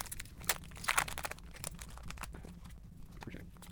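Crinkling of a card pack's foil wrapper being torn open and handled, a steady stream of sharp rustles and crunches with a few louder bursts, no voices.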